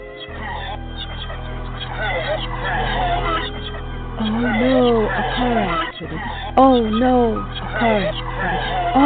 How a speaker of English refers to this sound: Oh no, a car accident.